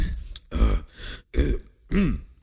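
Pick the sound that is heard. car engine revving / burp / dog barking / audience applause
burp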